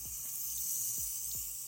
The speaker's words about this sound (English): Turn the water off, and I'm going to apply some to my hair.